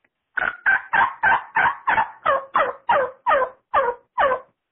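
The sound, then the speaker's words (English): A string of about a dozen evenly spaced hen turkey yelps made on a call, each note sharp and loud, sliding downward, rolling along in a steady rhythm with no talking. “As opposed to a hen yelp.”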